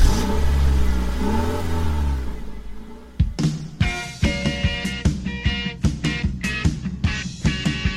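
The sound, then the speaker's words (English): A car engine revs loudly and climbs in pitch for about three seconds, then gives way to a rhythmic, beat-driven stretch of music with sharp percussive hits. “Let's get in the car and take a little road trip.”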